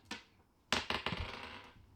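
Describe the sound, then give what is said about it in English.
Dice rattle onto a hard tabletop for a perception roll: one sharp click, then a quick burst of clattering taps as they tumble and settle, fairly loud with no talking. “I can't know it unless I fucking roll it.”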